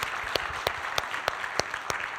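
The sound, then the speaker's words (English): A crowd at a worship service applauds the band steadily, a dense wash of clapping with a few sharper, louder claps popping out at a regular beat. Moderately loud and continuous, with no voices. “Can we just give another round of applause”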